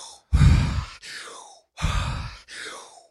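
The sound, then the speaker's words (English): Two quick cycles of deep, forceful breathing during a breathing exercise: a loud whooshing breath drawn in really hard, followed by a softer airy draw, repeated in a steady rhythm, with no talking. “So you're basically doing your chain breathing.”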